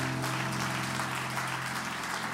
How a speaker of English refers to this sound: You can give the Lord a hand clap of praise.